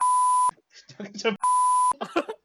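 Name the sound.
censor beep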